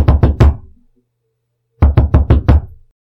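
Someone knocks on a door: three quick, solid raps, a brief pause, then four more in an even rhythm, loud and close with a short woody ring after each.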